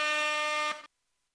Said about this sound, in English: So that's air horn.